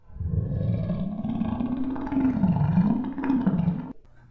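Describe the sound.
An audiobook narrator's voice imitates a growl at the end of the story: one sustained, low, rumbling snarl lasting about four seconds, steady and fairly loud, with a slowly wavering pitch. It stops abruptly, with no talking.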